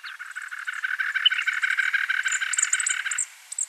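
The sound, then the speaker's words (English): A cactus wren, Arizona's state bird, gives a loud, harsh rattling call: a rapid, even string of raspy chugging notes for about three seconds, with faint higher chirps alongside before it stops abruptly. “The cactus wren is definitely a sound I associate very closely with Arizona.”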